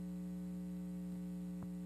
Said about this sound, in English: We all right? You hear me? All right. There's a hum, by the way.